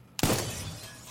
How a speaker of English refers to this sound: fires the pistol at the acrylic glass observation window.